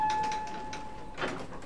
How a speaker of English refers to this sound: That's not what this thing is supposed to sound like. Oh, you'll hear that sound when the doors open at the bookstore. It's a big tourist attraction.